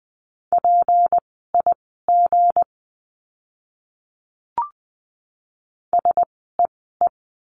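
Morse code practice words for the letter g, sent at 20 wpm: a steady, mid-high beep keyed into short dots and longer dashes, in two bursts separated by a quiet pause with a single soft click.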